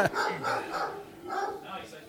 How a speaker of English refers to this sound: We got Toby doing his best impersonation of a scary dog with a mean bark. Old Yeller. I don't know how sensitive these mics are, but you might hear Toby a lot.